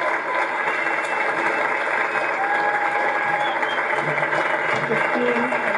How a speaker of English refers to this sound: I'd love to hear a massive clap for two of the most essential parts of our company.